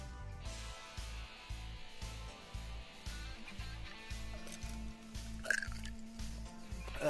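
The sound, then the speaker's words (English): Someone takes a swig of a drink from a glass that is getting low, a steady run of low, rhythmic gulps and liquid sloshing that continues for several seconds with no one talking. “Taking a swig, huh?”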